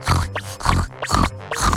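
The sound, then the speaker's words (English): Four rough grunts from a round, chubby spotted pig, in a steady rhythm, fairly loud, each a short nasal burst with brief gaps between, and no talking alongside. “Spotty turned into a round, chubby spotted pig.”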